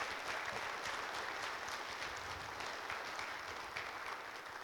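A church audience claps steadily, a dense, even wash of many hands applauding at a constant level for the whole stretch, with no voices standing out.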